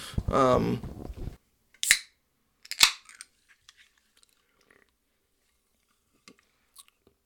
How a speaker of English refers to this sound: Sorry, I needed to take a little sip there. Taking a little sip of my Miller Lite.